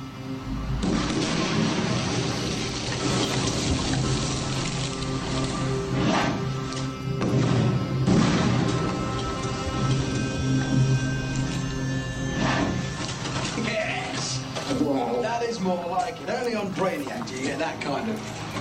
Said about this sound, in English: drop the rubidium in the water. Stand back, everybody. This one's going to be bad. 2 grams of rubidium will only react when our specially designed vial dissolves in the water